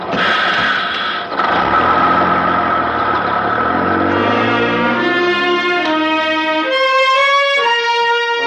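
bus engine idling

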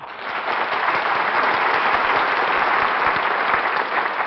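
studio audience applause

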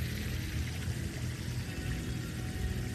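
rain falling

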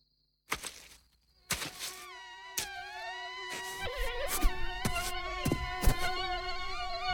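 mosquitoes buzzing

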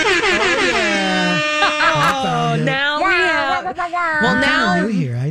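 air horn sound effect

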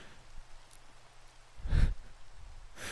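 rain falling

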